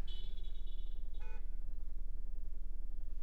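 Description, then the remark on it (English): Steady low rumble of road traffic with a sustained high-pitched tone early on, then a short, sharp car horn honk over the idling engines; no one speaks. “Sorry, one moment. Looks like the traffic. Looks like we're moving.”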